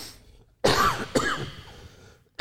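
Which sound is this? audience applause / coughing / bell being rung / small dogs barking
coughing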